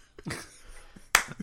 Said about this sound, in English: You can't slow clap your own.